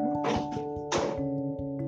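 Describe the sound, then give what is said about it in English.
A door being opened for someone who is at the door: two dull, heavy thunks about half a second apart, with a brief rattle, over a steady droning tone that continues throughout. “Now, today, somebody's at my door. Let me go open that up.”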